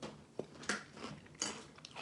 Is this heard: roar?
no